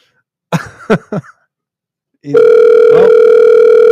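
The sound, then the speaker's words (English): A few short throat-clearing coughs, then a steady, loud telephone dial tone hums continuously until the end as someone tries to call back a missed caller, with a brief faint rustle partway through. “I tried to call someone back who I missed, but that's it.”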